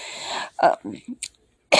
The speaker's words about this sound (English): I couldn't stop coughing. Everything made me cough. I couldn't talk. I lost my voice.